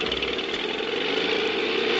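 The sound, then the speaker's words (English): A small outboard motor drones steadily and fairly loud, a continuous buzzing, rattling engine hum with no pauses or voices, holding an even pitch throughout the brief stretch. “very often our role-playing consisted of reenacting favorite Popeye episodes while swabbing the deck and pretending to fire up the outboard motor.”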